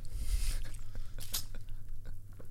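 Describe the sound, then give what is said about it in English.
Someone drinks water from a Maxxis Racing squeeze water bottle: a hissing squirt followed by wet swallowing and clicky mouth noises, over a steady low hum. No one speaks. “I'm trying to drink some water out of my Maxxis Racing water bottle.”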